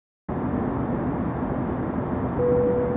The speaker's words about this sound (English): Attention, passengers. For reasons that are not important to this premise, this airplane is currently crashing. We're losing altitude at a rate conveniently proportional to the development of this sketch.